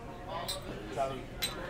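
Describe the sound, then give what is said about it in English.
Glasses of tequila clink together in a toast, a few bright ringing taps spaced over a second or so, with murmuring voices in the background. “So no pressure. Cheers, everybody. Cheers.”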